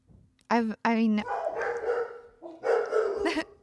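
Two loud, sharp dog barks ring out in quick succession, followed by a longer stretch of rougher, overlapping barking and yapping.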